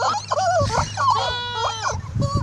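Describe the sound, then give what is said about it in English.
A squeezed rubber chicken squawks loudly, letting out a run of shrill, wavering honks, one stretched into a longer strained wail, with no talking over it. “Oh, that is obnoxious. Chicken. They had rubber pigs that you could squeeze too, and they made these.”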